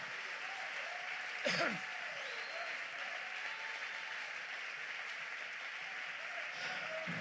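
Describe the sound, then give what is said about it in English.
An audience claps hands in praise of God in steady, dense applause that fills the whole stretch, with a brief louder burst early on and a faint voice rising underneath near the end. “Oh, let's clap our hands and praise him for that promise.”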